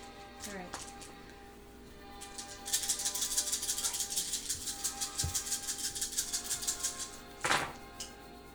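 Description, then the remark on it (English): A rapid, dense clatter of ten eight-sided dice rolled for damage, tumbling and rattling across a hard surface for several seconds, with a brief voice sound before it and a sharp knock near the end. “Oh my gosh, this is a good damage roll.”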